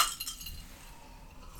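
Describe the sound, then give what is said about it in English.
Glasses clink together in a quick toast, a few bright, ringing taps near the start that fade away quietly, with no voices over them. “Cheers.”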